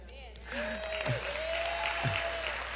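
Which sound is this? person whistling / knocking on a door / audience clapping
audience clapping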